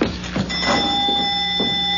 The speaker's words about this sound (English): Yeah, the bell. The doorbell. It's the same.